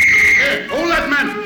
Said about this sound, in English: When the gendarme finally released me and I reached the other side of the street, another whistle blew.